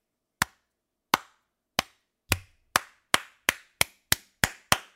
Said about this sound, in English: I've done this with joggers in the street, where if I see a jogger run past, I'll start doing this as I see them approach. A slow clap? Yep.